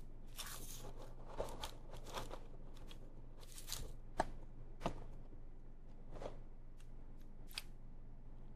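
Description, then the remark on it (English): Someone munches crunchy food while on the phone, a string of sharp, crackly bites and chews in an irregular rhythm over a steady low hum, with no talking. “Am I making you hungry by eating on the phone?”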